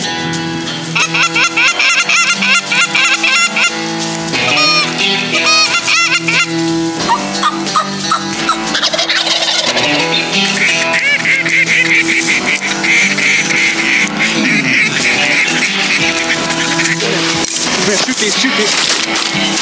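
A large flock of snow geese honks continuously, dozens of overlapping high, yelping calls forming a loud, dense chorus that stays busy throughout.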